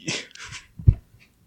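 A dog makes a few short, breathy snuffles, followed by a brief low grunt or whine, then quiet. No one speaks.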